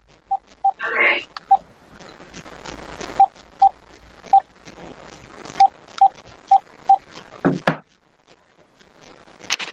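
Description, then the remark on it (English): Someone dials a phone keypad to call in: around a dozen short, clear beeps at an uneven pace, standing out over a low, muffled background with a brief louder rustle near the end. “I'm going to call in.”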